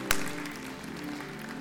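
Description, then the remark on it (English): A crowd claps together after a prayer in a steady, dense patter at moderate volume, opening with one sharp clap and continuing evenly without any voices. “It's just, yeah, we can applaud. That's okay, right?”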